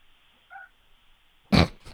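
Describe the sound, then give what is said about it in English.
A dog grunts while being walked: one loud, rough snort followed quickly by a softer second one, with a faint, brief higher whine a moment earlier. No one speaks. “Sleeping, walking the dog. Which you can hear right now.”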